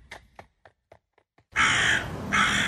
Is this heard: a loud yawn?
no